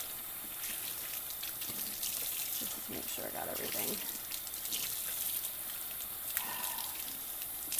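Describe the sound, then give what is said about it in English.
Running water pours steadily from a tap as items are rinsed under it, a continuous hiss with some splashing, while a person talks briefly over the flow. “Rinse them off and throw them back in some clean water.”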